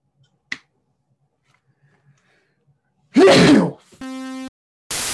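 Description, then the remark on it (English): A single crisp finger snap rings out in near silence as a man snaps his fingers with his hand stretched all the way above his head, followed later by a loud breathy burst like a sneeze, a brief electronic tone, and a hiss of noise. “He's just snapping his fingers.”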